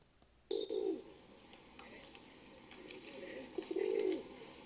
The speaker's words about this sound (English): The typical pigeon that would be spotted in Chicago and other urban areas is the feral pigeon. Here is an example of the feral pigeon's call.